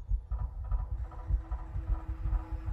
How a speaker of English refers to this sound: Something's wrong. What is it? His heartbeat.